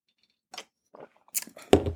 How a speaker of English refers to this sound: Anyway, let me get a sip of my drink, child.